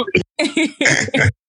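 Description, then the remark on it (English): A rapid series of five or six harsh, raspy coughs in close succession, loud, with no talking. “if you ain't gonna pass that shit, nigga, stop coughing like that.”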